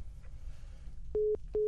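Two short, loud electronic beeps of a steady single pitch, evenly spaced, like a phone line's busy or disconnect tone after a call hangs up, over a low background hum.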